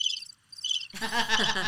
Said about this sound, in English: Hold on, we have a cricket sound. That's not it. Cricket sound.